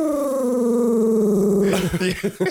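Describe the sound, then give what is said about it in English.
A dog growls: a loud, low, sustained rumble that sinks slightly in pitch, then breaks into a few short, choppy snarls. No one speaks over it. “I know the dog just really does not like ….”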